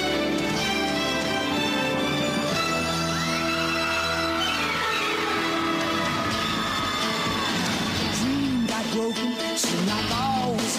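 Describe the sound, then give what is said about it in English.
The theme song of the 1990s sitcom Step by Step plays loudly and continuously, with full, dense instrumentation and gliding melodic lines, and no one talks over it. “What a great song, too.”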